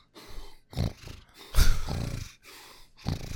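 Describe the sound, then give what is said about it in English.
A person imitating heavy breathing snorts in a series of harsh, rhythmic nasal bursts, about six in a row, fairly loud, with no talking. “Now you're just snorting.”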